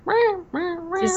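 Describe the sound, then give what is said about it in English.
A voice imitates odd, nasal duck quacks as the calls of giant egg-shaped birds at the top of a tree: three drawn-out honking calls in quick succession, fairly loud, with no other sounds around them. “Just making the weirdest duck noises.”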